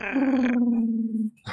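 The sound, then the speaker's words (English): A person imitates an owlbear with one loud, sustained cooing growl that slowly drops in pitch over about a second, followed by a short breathy burst. “Does the owlbear coo or, like, growl? A little bit of both.”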